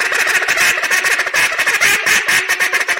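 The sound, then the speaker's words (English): A rapid series of raspy hen-duck quacks, a multiple quack blown on a duck call, loud, in a steady rhythmic run of notes with no talking. “Did I do the multiple quack right?”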